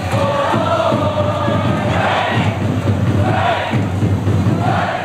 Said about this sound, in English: the cheers were led by drums.